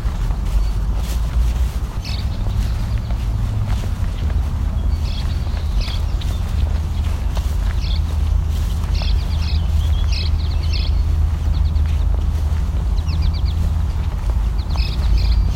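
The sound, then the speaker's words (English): House sparrows cheep in short, scattered bursts of chirps, repeating irregularly over a steady low rumble and some clopping background noise. “There's the house sparrows cheeping.”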